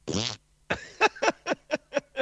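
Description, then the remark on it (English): A loud fart, let out during a lull in a Purim Megillah reading, opens with a brassy, buzzing blast, then after a short pause sputters out in a rapid series of about seven shorter, rhythmic bursts. “So what I did is waited until all the noise just about died down and the rabbi was going to continue with the Megillah, and then I let out a fart.”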